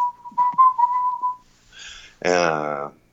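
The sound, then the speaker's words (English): A person whistles a short, wavering melody for about a second and a half, fairly loud, followed by a brief breathy sound and a short sung or hummed vocal note. “And then I sometimes do a little whistling bit with that that goes.”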